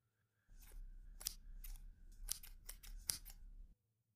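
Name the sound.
scissors cutting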